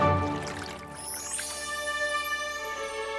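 Water from jars is poured steadily into a container for wedding guests, its gurgling tone rising in pitch as the vessel fills. The pour runs for a few seconds with no voices.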